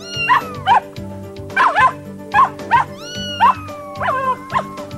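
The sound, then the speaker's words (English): A neighbor's dog, tied up outside, barks again and again, sharp yappy barks coming mostly in quick pairs, fairly loud, over a steady low background hum. “My neighbor's dog is tied up outside.”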